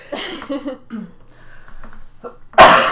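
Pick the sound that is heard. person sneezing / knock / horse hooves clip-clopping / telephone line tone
person sneezing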